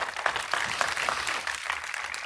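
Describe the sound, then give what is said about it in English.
A church audience claps their hands to the Lord in a steady, dense wash of applause, many overlapping claps sustained at an even loudness throughout, with no voices standing out. “Come on, clap your hands to the Lord again right there.”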